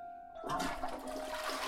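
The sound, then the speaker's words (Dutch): A toilet cistern flushes, starting after a brief quiet moment with a sudden loud rush of water that keeps gushing steadily to the end. “Dat het water in de stortbak van de wc uit de sloot kwam, hoefden de kinderen niet te weten.”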